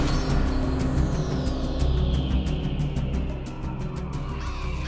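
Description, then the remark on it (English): A flock of crows caws loudly and incessantly while dive-bombing and trying to come in through a window, harsh calls overlapping in rapid bursts over a steady low rumble. No one speaks. “They're trying to come in through the window! Dive bombing!”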